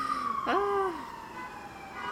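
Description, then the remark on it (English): An emergency vehicle siren wails past outside, its tone sliding downward as it goes by, moderately loud against a steady background hum, with no voices. “Sirens ring true.”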